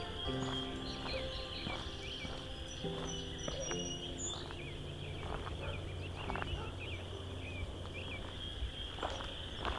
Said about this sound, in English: Some American robins here too.